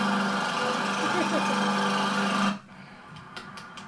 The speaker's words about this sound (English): Right now, Supreme Patty's got a lawnmower, and he's in the library right now, whipping the lawnmower around the library.